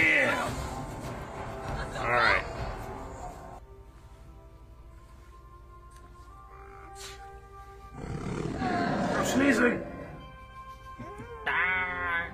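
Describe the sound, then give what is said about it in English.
A creature roars in three loud bursts, played back from a clip: a long growling roar at the start, another in the middle, and a shorter rising one at the end, separated by a quieter humming background. “I like to hear the roar back at it.”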